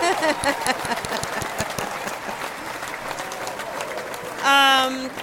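Steady applause from a small group for a behind-the-scenes team member, dense clapping that holds for about five seconds, with a loud, high, whistle-like cheer breaking out near the end.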